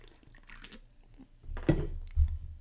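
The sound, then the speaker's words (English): Sips of fizzy cherry Pepsi from a can: a soft wet slurp, then a couple of louder, low gulping swallows near the end, with no talking. “Which I need to keep drinking, or else, ah, gosh, you ever burp after drinking a soda, and then it's, like, all foamy?”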